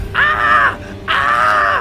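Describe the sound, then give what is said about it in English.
A boy screams in fear twice, two loud, high, strained cries each lasting under a second, separated by a brief pause, with no talking. “But one boy couldn't hold it in anymore and began to scream.”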